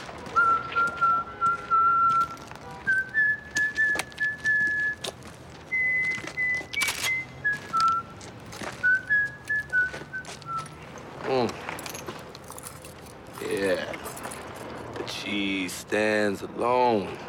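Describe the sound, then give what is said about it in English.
A man, the character Omar, whistles the nursery-rhyme tune The Farmer in the Dell while walking in the middle of the street, clear sustained notes in a steady melody, over street background noise with shouts and commotion rising toward the end. “So, next thing you know, you hear Omar whistling the farmer in the dell.”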